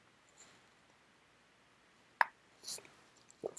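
A soft throat gulp: a sharp wet click, followed by a brief breathy hiss and a second small swallowing click, all faint against near silence with no talking.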